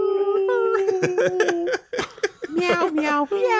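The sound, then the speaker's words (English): A person mimics a dog's whining howl, holding long, wavering tones that bend and break into short yelps, fairly loud, with a brief pause midway before the whine resumes. “Just have dogs whining through the whole thing.”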